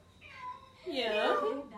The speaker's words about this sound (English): Oh, hello, cats. Goodbye, cats.